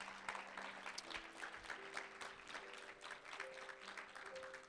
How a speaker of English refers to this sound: Let's give a hand clap for the word of God.